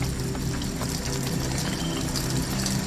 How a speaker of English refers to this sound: I went into the wilderness area, which is the area that I was managing. And I rained. I turned the rain on